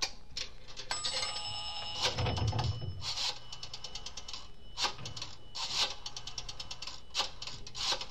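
A telephone being dialed from a drugstore phone booth to call the Roxmore Apartments: bursts of rapid mechanical clicks from a rotary dial, fairly loud, with a brief ringing tone near the start and a low hum beneath.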